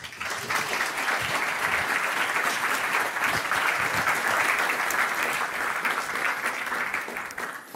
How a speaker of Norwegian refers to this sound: Gi han en varm applaus.